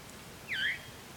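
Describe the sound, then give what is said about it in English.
A single short, warbling phrase of vireo song rises and dips once, clear but moderately quiet against faint background hiss, with no talking. “This vireo is still going.”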